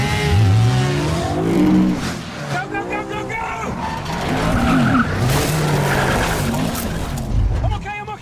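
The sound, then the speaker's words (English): A loud, frantic car chase: engines roar and rev while tires screech and skid repeatedly, with motorcycles whining through the constant high-speed din. “So, we're recording the show in the back of a car with a motorcycle gang chasing us.”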